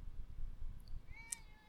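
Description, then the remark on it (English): A male cat lets out a single short, high meow near the end, fairly faint against a low rumbling background hum. No one is speaking. “Look at that cat, though. He's cute.”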